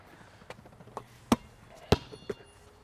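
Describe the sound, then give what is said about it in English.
A basketball bangs off the rim with two loud, sharp impacts and a faint metallic ring, surrounded by a few softer bounces and taps. No one speaks. “Oh! Hit the rim.”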